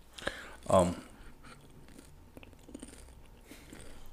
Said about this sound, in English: I could hear that crunch from over here. I know. Oh, God. It sounds like the Ninja Turtles when he's like, yeah. He's like, can you do that any louder?